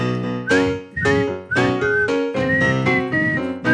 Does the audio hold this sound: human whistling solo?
yes